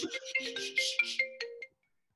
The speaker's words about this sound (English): Dude, the government's calling me right now. Answer the phone.